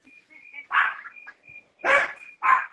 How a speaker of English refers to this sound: Oh, Lord, the dog's barking down, Lord.